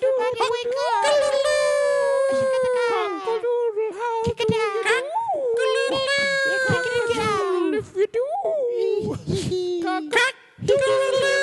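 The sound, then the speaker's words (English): Everyone present loudly imitates a rooster crowing together after a count of three: a string of high, strained cockadoodle cries that rise and fall in pitch, running almost continuously with a few short breaks. “Get all your cockadoodle noises out now.”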